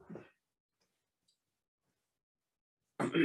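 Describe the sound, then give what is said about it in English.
Dice rolled for damage rattle and clatter in two short bursts, a softer one at the start and a louder, sharper one at the end, with near silence between them. “Is that rolling dice?”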